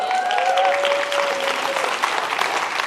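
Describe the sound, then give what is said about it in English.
A church crowd applauds steadily at the announcement that a new church campus will launch this year, a dense wash of many hands clapping at an even, fairly loud level for a few seconds, with a faint whistle-like tone gliding through the first half. “Those of you that clap know somebody that needs a campus.”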